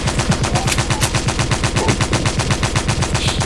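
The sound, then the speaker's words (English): A sustained burst of automatic gunfire from a gun with an extended banana-clip magazine, rapid evenly spaced shots firing continuously at a steady rhythm, loud and unbroken for several seconds with no voices. “Damn, they extendo. This nigga spin. Nigga, whole banana clip.”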